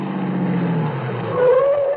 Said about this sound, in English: 12 minutes and 20 seconds later, we pulled to a stop in front of the fourplex.